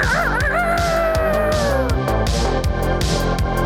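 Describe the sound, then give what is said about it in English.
A rooster crows once as a sound effect marking a listener's boost, a long wavering call that slides downward, layered over a loud, steady music track with a driving beat. No one speaks. “It's the rooster booster.”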